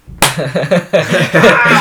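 A single sharp, close hand slap on someone's bottom, followed immediately by several rhythmic bursts of giggling laughter that continue to the end.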